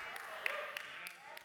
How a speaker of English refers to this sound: Only the front row is like, yeah. That's because they're on staff. Like, they like have to clap for me.